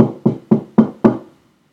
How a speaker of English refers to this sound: Maybe it's only locked from this side. What if we knock on the door?